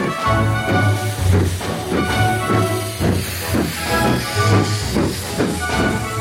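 A steam train sound effect: steady, rhythmic chuffs pulse about twice a second over a continuous hissing, humming drone, moderately loud and unbroken, with no voices.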